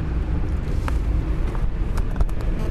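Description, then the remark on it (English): A car coasting and slowing down after the driver takes a foot off the accelerator, heard from inside as a steady low rumble of road and motor noise with a few faint clicks, no voices. “I like the way that it slows down when you take your foot off the accelerator. You hear that?”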